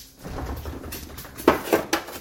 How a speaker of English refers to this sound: There we go, and pop, close the fridge.